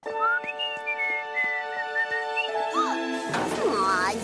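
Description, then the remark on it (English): Sustained whistling, creaking tones build for a few seconds, then a factory building collapses with a loud, rumbling crash and wavering debris noise near the end. No one speaks. “when Bart shows up the next day, the factory has crashed to the ground”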